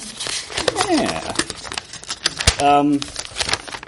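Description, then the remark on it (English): Rustling and crinkling of a paper-sized photo print, a picture of Earth taken by a space probe passing Saturn, being unfolded and handled, with quick irregular crackles throughout and a couple of brief voiced sounds mixed in. “I realize this is a problem now for those listening, but I have a picture that is, you know, the size of a piece of paper.”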